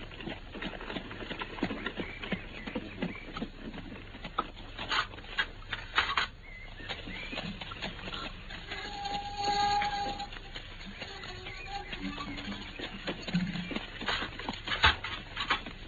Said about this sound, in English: I can see the carriage in the driveway now.